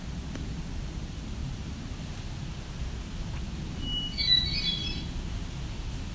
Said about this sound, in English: A little warbler coming towards me, ticking. Looks to be a female. An eyeline. Grayish, whitish underneath.